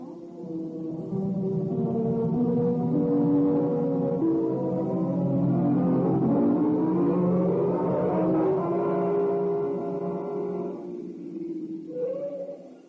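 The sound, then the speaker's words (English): A car engine hums steadily, its pitch rising and falling as the vehicle drives along, then winds down and idles as it pulls to a stop. “You can go back to headquarters, Lewis. I won't be needing the car for a while.”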